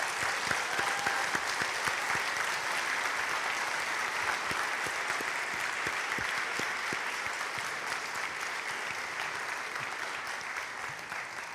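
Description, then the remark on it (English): A church audience applauds its musicians steadily for about eleven seconds, a dense, even wash of many hands clapping at once that holds its level before easing slightly toward the end. “As our musicians grab their seats for just a few moments, I feel like we should just give them a huge round of applause.”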